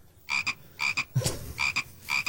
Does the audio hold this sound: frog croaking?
yes